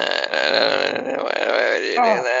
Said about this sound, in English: No, I can't hear what he's saying. He's not saying anything. He's just burping.